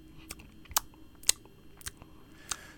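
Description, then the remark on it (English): A person imitates a cat lapping milk, the way Puss in Boots drinks milk from a little shot glass with his tongue, making a series of about six quick, wet tongue clicks, unevenly spaced and fairly soft, with no talking. “So like when he drinks his milk out of like a little like scotch glass or like a little like shot tumbler glass.”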